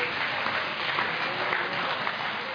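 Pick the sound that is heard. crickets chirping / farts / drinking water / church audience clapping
church audience clapping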